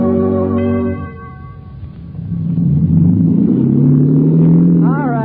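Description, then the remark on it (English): A boat engine drones loudly for about five seconds, a steady low rumble with a humming tone that dips briefly, then swells again before a short whining rise at the end. “Stop the engine.”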